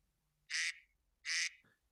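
Two loud, nasal duck quacks from a sound effect played on a phone as a game timer alert, evenly spaced about a second apart, each a short buzzy burst, heard alone against a quiet background.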